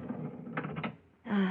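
A sticking elevator door grinds and rattles open in jerky scrapes, stalling briefly before a final louder clattering shove with a low metallic groan.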